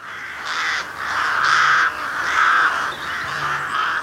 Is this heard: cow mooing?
no